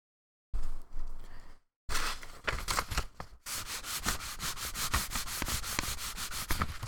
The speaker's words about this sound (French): C'est beaucoup plus standard comme son. C'est un son qu'on retrouve dans beaucoup, beaucoup de papiers. Plus industriel. La déchirure. Donc, sans surprise encore, comme son.